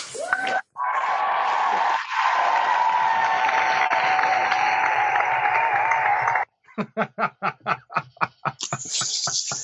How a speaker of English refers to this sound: Indeed, indeed. I was about to say, I'm going to clap for myself right now.